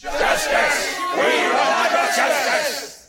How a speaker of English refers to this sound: A new noise arose from the army, like a wave starting with those nearest to me and moving toward the rear as Sir Littleman's words were passed among them. A growl of anger sounded, pierced by harsh shouts.